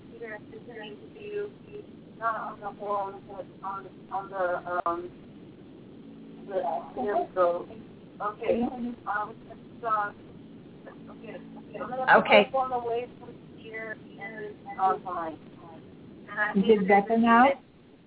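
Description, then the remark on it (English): Voices talk over a thin, telephone-quality line, and a hollow echo, caused by a computer's volume left up during the phone call, trails and doubles their speech. A low hum sits steadily underneath throughout. “I don't know if we can stop the reverberation, so we'll give it a try.”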